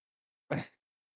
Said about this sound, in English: Wait, I'm going to sneeze. Go ahead.